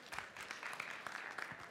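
A crowd applauds an audience member who asked a question, with dense, steady clapping, many overlapping hand claps forming a continuous crackling patter at moderate level, with no talking over it.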